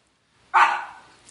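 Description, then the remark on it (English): A single sharp dog bark bursts out after a moment of quiet, loud, its tail fading over about half a second; the dog is barking at something. “There's the rain dog lady barking at something.”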